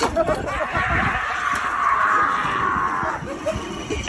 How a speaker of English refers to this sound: As you can hear in that, I'm screaming because I literally almost did a little bit of a poo-poo.